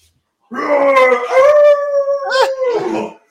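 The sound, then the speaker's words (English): A single drawn-out wolf howl, loud, holding a wavering pitch for nearly three seconds before trailing off with a brief yelping break near the end. “It's a wolf, ain't it? It's a wolf!”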